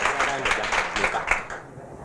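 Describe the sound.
Hands clap in a quick, steady run of sharp bursts, like a small group applauding, tapering off and fading out near the end, with faint voices in the background.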